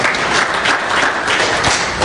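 An audience at the Bridge Church claps steadily, a dense, even wash of many hands with no voices over it, holding at a constant moderate loudness throughout.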